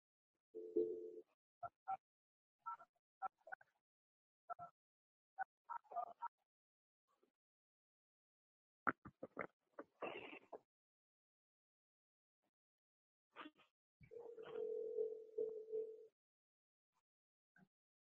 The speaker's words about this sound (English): All right. 97 Motor Inn. Let's do it. Yeah, just a random one. All right. Can you hear that dial tone? Yeah, I think I can hear, yeah.